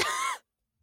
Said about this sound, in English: No, I had to cough.